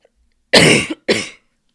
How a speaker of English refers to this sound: sorry, I had a little bit of a cough.